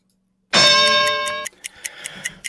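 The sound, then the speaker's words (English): A bright, loud harmonic tone rings for about a second, then gives way to a timer's steady, quick ticking, sharp regular clicks roughly five per second, with no one speaking. “Ready with the timer?”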